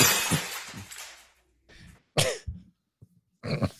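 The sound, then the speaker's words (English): A glass bottle crashes and shatters in one bright, loud burst whose rattle trails off over about a second, followed by a few short, throaty sounds like coughs or grunts. “You'd think by now, like the crashing bottle, I'd be like over it now.”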